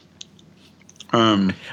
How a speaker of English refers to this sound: Are you chewing gum? What are you doing? I'm eating grapes. What kind of grapes? Green grapes. Oh. Seedless? USDA organic. Yeah, seedless.